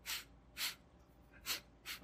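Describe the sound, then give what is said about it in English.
A voice imitates soft sniffling, four short airy inhales spaced irregularly, quiet, like a mother quietly crying and wiping away tears while watching a movie in a dark theater, with a brief louder sound cutting in at the very end. “Just like the little sniffles and just wiping tears away, like not even openly weeping.”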